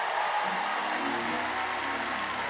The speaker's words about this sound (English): If you believe that, give him a clap offering. Let him know that you're talking to him.